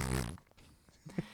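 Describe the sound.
A short, loud, buzzy raspberry blown with the lips, imitating a fart, lasting about a third of a second before quiet with a few faint clicks.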